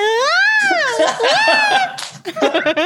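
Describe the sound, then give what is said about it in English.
A high-pitched movie scream that swoops up and falls in a wavering, sustained wail, then breaks into choppy, sobbing bursts near the end, loud throughout. “That scream is in like fourth percentile of screams.”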